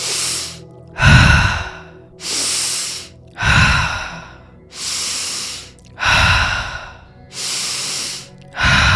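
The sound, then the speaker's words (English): Loud, forceful breaths in and out during a breathing exercise, repeating in a steady rhythm of about six hard, rushing exhales and inhales with short pauses between, no talking. “And on the exhale, release. Keep going. Keep breathing. Nice and forceful.”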